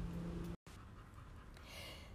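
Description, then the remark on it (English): A dog lying in the sun outdoors on a warm fall day pants steadily in quick, breathy, soft huffs, with a brief break in the sound partway through; no one speaks. “So you'll hear some traffic maybe, or one of my dogs panting as they're laying in the sun.”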